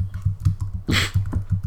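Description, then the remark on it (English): Rapid, steady keyboard typing with crisp key clicks in a quick irregular rhythm, moderately loud, with one brief louder clatter midway; no one speaks. “Sounds of typing and clicking.”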